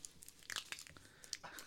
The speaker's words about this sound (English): I like the crunch of the original cup. The crunch on the border. Uh-huh. That's what puts it over the top. Good snap.